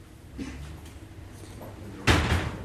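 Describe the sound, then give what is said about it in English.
The door of an early house pub in Smithfield opens with a heavy clunk near the end, after a stretch of quiet with a few faint knocks and rustles. “You open the door, you turn the alarm off, you get the ice, and you get your float in the hotel.”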